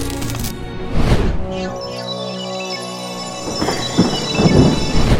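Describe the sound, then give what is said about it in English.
Steady, heavy rain hisses throughout, with deep rolls of thunder swelling near the start and again toward the end; a faint tonal whine sits underneath, and no one speaks. “I guess she was right about the rain.”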